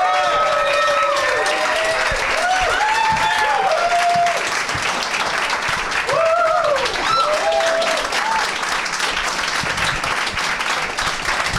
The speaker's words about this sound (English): Oh, shut up. You don't really like us that much. I was late. I did. I asked for thunderous applause. I really kind of milked it. It was good. It was nice.